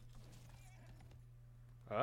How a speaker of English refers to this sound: So mounts, because the mount that I want to ride is this. Ooh, that's a cool horse.